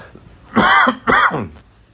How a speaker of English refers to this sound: Excuse me while I cough.